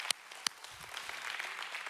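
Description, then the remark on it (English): Two sharp, loud claps ring out, then a church audience breaks into steady, sustained applause praising God, swelling and staying dense and crackling through to the end. “Oh, come on, somebody clap like God's been good to you.”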